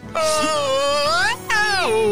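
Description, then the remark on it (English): A whale moaning sound effect, presented as a whale being milked: two long, loud, wavering calls with sliding pitch, the first rising and falling over more than a second, the second starting high and gliding down. “That's the happy sound of a whale being milked.”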